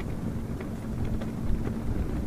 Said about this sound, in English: The houses there had colorful prayer flags, which never seemed to just hang. They were always furiously flapping in the wind.